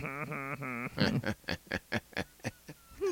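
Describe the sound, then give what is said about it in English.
An owl calls three times in quick, rising, tonal hoots, followed by a rapid run of sharp, rhythmic bursts and a final short call, fairly loud with no talking. “No, that's an owl.”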